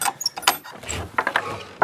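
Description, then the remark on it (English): Keys jangle at a door in a quick, irregular burst of bright metallic clinks and rattles, several sharp jingles over a couple of seconds with no one speaking. “This is my door.”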